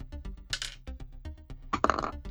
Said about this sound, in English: All right, roll me a d10.